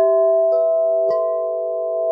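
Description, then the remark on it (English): A Wind River wind chime, swept by the wind, rings out with long, overlapping metallic tones, fresh strikes landing every second or so as the sustained notes shimmer on, clear with no voices. “the wind sweeps up the Wind River chime. We hear the gorgeous tones of these wind chimes, and it's just this like moment to snap back into the present.”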